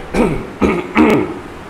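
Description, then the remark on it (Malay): A voice performs three short, raspy coughs in quick succession, fairly loud, sounding like an acted, throaty hacking with no talking in between, acting the story character Pak Mat coughing while sitting on a sofa. “Jadi suatu hari, dalam keadaan duduk di sofa, Pak Mat dalam keadaan terbatuk-batuk.”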